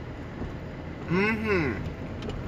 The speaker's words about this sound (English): What's up, everybody? I'm in the car and I'm going to work.